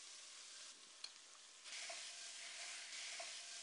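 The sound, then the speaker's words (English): Steady, crackling sizzle of ground beef frying in a pan with oil, garlic and butter, a dense hiss that swells louder partway through, with a few sharp pops and clicks and no one speaking. “Now, we're going to throw in our ground beef.”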